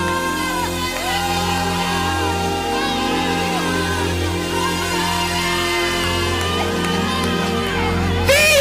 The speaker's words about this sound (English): Shouts of victory. Amen.